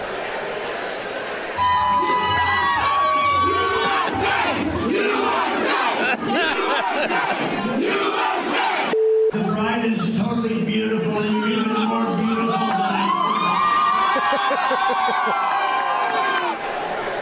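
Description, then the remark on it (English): A large crowd of wedding guests at a golf club owned by Donald Trump in New Jersey cheers and whoops loudly as Donald Trump arrives, many overlapping voices shouting together in a sustained roar that briefly cuts out midway, then surges again with high excited yells. “There was a wedding going on, and he crashed that bad boy.”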